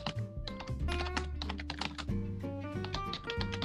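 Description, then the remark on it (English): Rapid, forceful typing on a computer keyboard, with dense clattering keystrokes hammering away for several seconds over a steady tonal background. “Aggressive keyboard tapping.”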